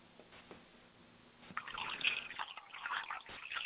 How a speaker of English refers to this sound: I'll have some herbal tea. Oh, herbal tea? Okay, hang on a sec. Let me just pour. Just a minute.